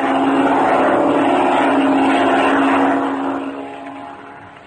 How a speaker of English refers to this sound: Listen, Red. What? It's a plane, Chuck. There it is. A black one. Flying directly this way.